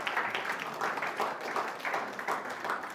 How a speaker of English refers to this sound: Give yourself a clap. That was good.